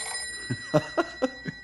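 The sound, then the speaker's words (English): A telephone bell at a ranger headquarters rings in a quick, rhythmic burst of about five sharp metallic strikes, with a bright lingering shimmer between them and no voices. “Go back to sleep, Stumpy. It's only the phone.”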